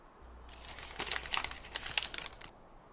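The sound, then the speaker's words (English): A newspaper rustles and crinkles for about two seconds, with several sharper crackling bursts as the pages are handled and shifted. No voices. “Read this.”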